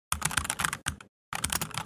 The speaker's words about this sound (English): It's the most insulting, condescending thing that these virtual customer reps do. It's the fake typing. Just getting this all down.